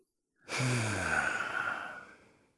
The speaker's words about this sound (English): So first we breathe in normal, but then on the breathing out, we make a nice long breathing out like this.